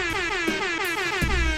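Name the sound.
air horn sound effect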